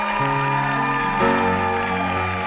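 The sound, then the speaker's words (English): An audience at a church prayer service claps for themselves on the 68th day of daily prayer services, a steady, dense patter beneath sustained, droning organ-like chords, the applause swelling slightly partway through with no voices. “Ah, you better clap better than that for yourself.”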